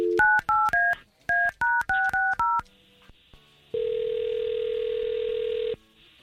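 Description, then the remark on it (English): A man's phone number is punched in with a quick run of about eleven touch-tone beeps in two bursts, then a steady ringback tone sounds for a couple of seconds. Clear, no voices. “We'll try to get him on the line, talk to him for a little bit, and see if we can't bring you in, okay?”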